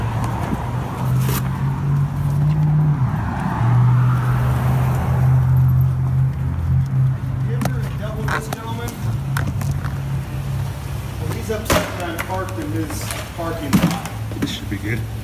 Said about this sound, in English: The officer just quietly gets back in his car.